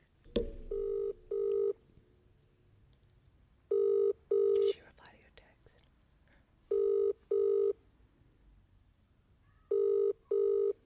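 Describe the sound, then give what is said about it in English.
An outgoing phone call's ringback tone repeats four times, each a double burst of a steady electronic tone with about three seconds between pairs, clear over a faint background hiss. “Awkward if she doesn't pick up.”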